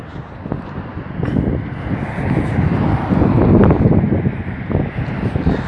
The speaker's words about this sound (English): It's kind of windy and the wind is pretty cold.